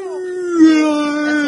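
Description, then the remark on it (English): A voice imitates whale speech, as Dory does in Finding Nemo, with one long, drawn-out moaning wail. The pitch holds steady, then sags slightly lower. It is loud and sustained for over a second, with no other sounds. “Dory, do not speak whale! Maybe he has a humpback. You're just making gurgling noises!”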